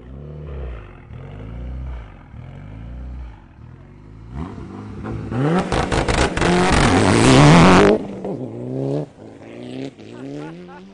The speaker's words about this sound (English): It's an awesome Evo 8. Awesome sounding Evo 8. Full rally car. Rally America stickers all over the front. Studded Toyos.